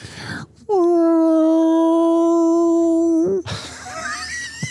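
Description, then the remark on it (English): A person imitates a humpback whale call with one long, loud, steady moaning tone, ending in a slight upward wobble, with faint background noise before and after. “a humpback whale”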